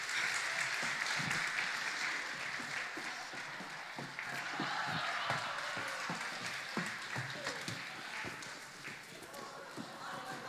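An audience claps steadily for several seconds, a dense, bright patter of many hands that stays loud throughout with a few sharper individual claps standing out.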